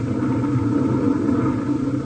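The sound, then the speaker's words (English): A car engine rumbles steadily as the car drives out of a garage attached to a house, a low continuous drone with a slight rise toward the end. No voices. “He drives out and you don't do nothing?”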